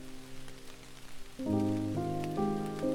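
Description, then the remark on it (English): Steady, gentle rain patters softly in the background while calm, sustained musical chords swell over it, growing fuller partway through. No one speaks. “Allow the rain to acknowledge it and just be.”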